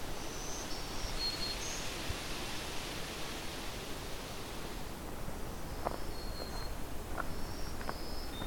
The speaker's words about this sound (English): So as you can hear, I got several of these black-throated green warblers. And they're still singing even though it's about a half hour before sunset. This species can be very vocal.